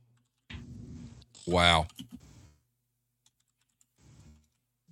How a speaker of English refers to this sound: No. I was typing something in the chat